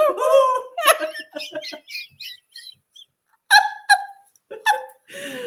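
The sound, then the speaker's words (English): People make a string of short, breathy 'ooh' hooting sounds while saying the word 'oocytes', in imitation of owls, the voiced bursts coming in quick irregular runs with laughter mixed in, fairly loud. “We sound like owls.”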